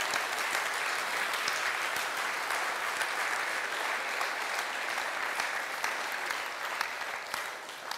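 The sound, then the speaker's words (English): A crowd applauds steadily, a dense wash of many hands clapping at once, sustained and fairly loud for several seconds with no voices on top, in thanks to the women who taught the Bible in the community through the summer. “Would you give them a round of applause, please?”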